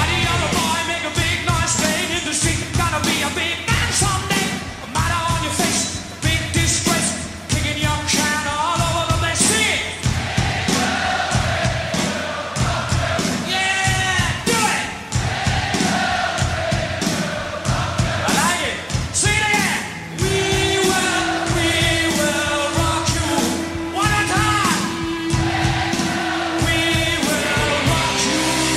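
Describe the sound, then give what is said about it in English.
A huge crowd stomps and claps in a steady, repeating beat while many voices sing along loudly, with shouts and whoops rising over the dense, echoing roar of a packed stadium. “It was dope because they were like, yo, everyone's singing the songs to our, everyone's singing the lyrics to our songs.”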